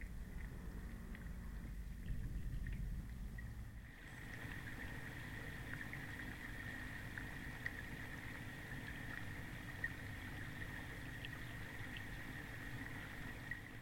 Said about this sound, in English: These underwater field recordings taken at Proby's Quay and Sullivan's Quay offer a brief view into the richness of the river as it flows by us every day.